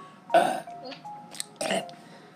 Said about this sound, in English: I just burped.